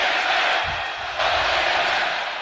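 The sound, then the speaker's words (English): A large basketball arena crowd chants "Go Big Red" during a Nebraska versus Purdue game, roaring in a dense, steady wall of voices, loud and sustained throughout with a slight swell partway through, and no single voice standing out. “And you hear the Go Big Red chant.”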